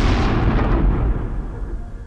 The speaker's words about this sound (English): And it took a minute or two as they hit for you to even begin to hear it. Hear this deafening boom that is rolling over the land.